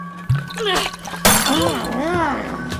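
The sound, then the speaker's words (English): A glass whiskey bottle smashes against a man's forehead in one loud, sudden crash, its sharp burst of noise trailing off with a splash of whiskey spilling down his ragged coat, while a voice groans and cries out before and after the impact. “It shatters against his forehead and spills down his ragged coat.”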